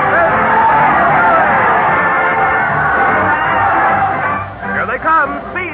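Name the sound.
crowd cheering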